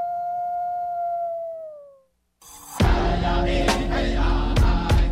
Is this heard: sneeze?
no